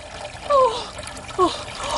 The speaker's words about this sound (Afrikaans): Die begin die water oorloop.